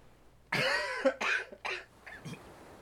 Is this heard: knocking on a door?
no